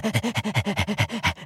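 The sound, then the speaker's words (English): A dog pants quickly and steadily, about seven or eight rapid breaths in a regular rhythm, fairly loud, with no talking. “Doggy, doggy, doggy. Come here, doggy.”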